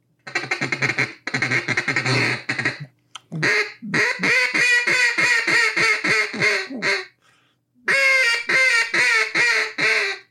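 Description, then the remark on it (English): A duck call blows a long run of loud, rapid, raspy quacks imitating a hen mallard, delivered in several close, continuous bursts with brief pauses between sequences and no talking. “I mean, that's a mallard hen is what that is.”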